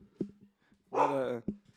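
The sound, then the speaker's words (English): A dog barks once, loud: a drawn-out, strained bark lasting about half a second. Short low grunts or thumps come just before and after it. “We got dogs barking.”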